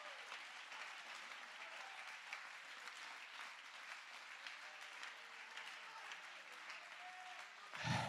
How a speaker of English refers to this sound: Clap your hands and give God praise if you believe that.